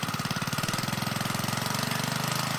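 A small pull-start engine with a recently tuned-up muffler runs steadily, its rapid, even chugging pulses filling the whole stretch with a loud, rough buzz and no voices.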